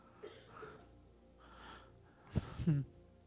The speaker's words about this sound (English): But listen, have you ever noticed, though, that when you do that, the first thing that happens is the gasp of air?